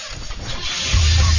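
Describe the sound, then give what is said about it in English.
An engine cranks and catches, settling into a steady low rumble after about a second; fairly loud, with no voices. “We're going to get to the point where you don't even acknowledge the engine starting.”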